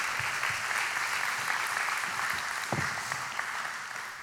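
Sustained applause from a large crowd at a church service, given for a woman, a dense, steady wash of many hands clapping at once with no voices standing out.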